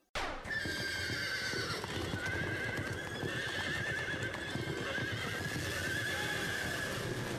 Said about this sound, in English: Yeah! And I really liked it, except they don't tell you it's Shayna Baszler's entrance, and it just starts off with horses neighing and hooves.